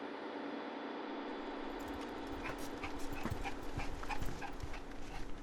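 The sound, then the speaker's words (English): Oreo, a 3-year-old basset hound and blue heeler mix dog, pants in quick, breathy bursts and lets out soft, high whimpers, growing busier in the second half, over a steady background hiss. “We have a dog. He's a like 3-year-old basset hound blue heeler mix named Oreo.”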